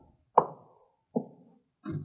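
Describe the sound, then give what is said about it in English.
A door is pushed shut with a few heavy, hollow thuds, each knock ringing briefly before fading, followed by a final rattling bump. Fairly loud, with no voices. “One of you go back and push that door shut.”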